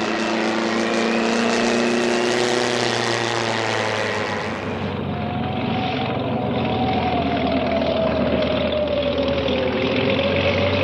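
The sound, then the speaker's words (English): A propeller plane's engine roars loudly, then its tone drops and settles into a steadier, lower drone as the aircraft lands and taxis along the runway. “I'll taxi to the end of the runway and cut the engine there.”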